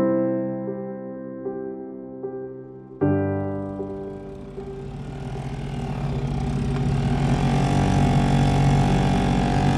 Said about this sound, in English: We hopped into a Zodiac craft, a small inflatable boat with a motor, and started zooming around, taking advantage of the ultra-clear water to conduct a visual search, looking to the floor below.